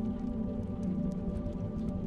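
Steady rain with scattered light raindrop taps against a window, soft and continuous over a low, dense rumble, with no voices.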